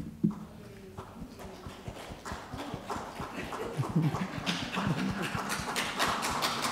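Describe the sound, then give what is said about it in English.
A group of people clapping their hands in appreciation of a speaker, in a dense, irregular patter of sharp claps that swells slightly and holds steady for several seconds, with no talking over it. “Yes, one hand clapping.”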